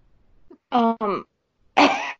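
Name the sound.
cough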